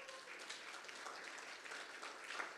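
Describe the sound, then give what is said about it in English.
An audience claps together for a birthday in a dense, continuous burst of applause, many hands overlapping into a steady crackling wash with no clear individual beats, holding at an even level throughout. “Yes, let's give a big hand clap.”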